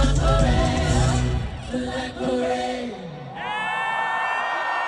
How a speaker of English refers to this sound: Listen to the round of applause. Listen.